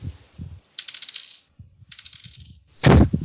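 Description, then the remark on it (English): Dice clatter and rattle across a table in a few quick bursts, ending with a louder thump, with no one speaking; the wrong dice are rolled for a deceit roll during a game. “Whoops, rolled the wrong dice.”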